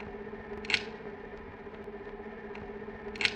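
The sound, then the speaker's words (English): Steady, regular clicking of a light's mechanism: two crisp, sharp clicks spaced a few seconds apart, set against a constant low electrical hum with no voices. “The sound of the steady, regular clicking of the light in operation is what Roland Barthes might call a rustle, the sound of the good functioning of a machine.”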